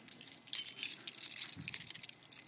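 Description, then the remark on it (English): A bunch of keys on a ring jangle, a bright, continuous metallic clinking that rattles on irregularly for a couple of seconds with no voices. “I'm going to talk to you about my keys.”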